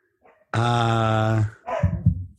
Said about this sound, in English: You bring your dog on the show?